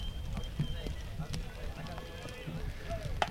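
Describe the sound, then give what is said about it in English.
During a baseball game, raindrops patter irregularly on the announcer's plastic coverings, making scattered sharp taps and ticks of varying loudness over a steady low rumble, with faint voices in the background. “Sure, you guys can hear some raindrops hitting my plastic coverings here.”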